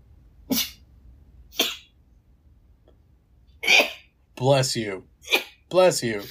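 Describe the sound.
Two short, sharp sneezes about a second apart, fairly loud, followed after a pause by a few bursts of voices.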